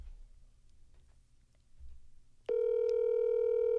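After a moment of low background rumble, a loud, steady telephone dial tone switches on abruptly as a phone call is placed, holding unbroken at a constant mid pitch to the end.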